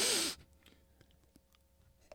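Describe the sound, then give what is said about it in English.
A single sharp, loud sniff, a quick breathy rush of air lasting a fraction of a second, followed by near quiet with a few faint ticks and clicks. “He's sniffing.”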